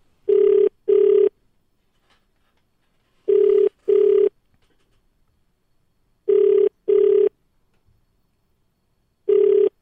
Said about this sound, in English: All right, let's call Zishi. All right, it's ringing.